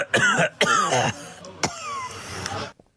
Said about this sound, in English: trying to put on a really bad cough.